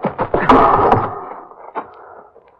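A heavy door slams shut with a cluster of sharp, loud impacts, followed by a reverberant rumbling decay and one last thud as it settles.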